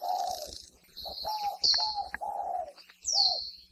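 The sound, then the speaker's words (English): A spotted dove gives its cooing song, in a recording from the Cornell Lab of Ornithology: a run of soft, low, mellow coos in an uneven phrase, clear, while thin high chirps from other birds sound in the background. “University of Hawaii at Hilo Professor Patrick Hart introduces us to the spotted dove.”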